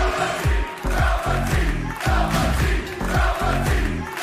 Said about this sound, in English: Can you hear it? The Dream can hear it. The Dream can still hear the people buzzing. Buzzing. About what the next experience is going to be.